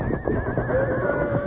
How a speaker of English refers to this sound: There's a fire creeping in from three sides. The horses woke me up. Come on. We got to clear out of here. Unhitch the horses quick. They're crazy from fear now.